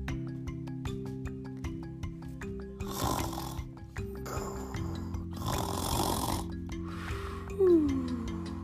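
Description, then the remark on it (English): Cheeky monkey character Milo, asleep, gives three breathy, rasping snores that rise and fall at slow, steady intervals over light background music, followed by a short descending whistle. No one speaks. “Milo is still asleep. He must be tired from all his adventures.”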